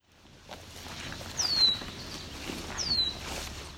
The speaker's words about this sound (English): This was the call of a red-winged blackbird.